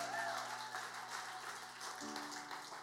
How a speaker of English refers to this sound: Can we just clap our hands?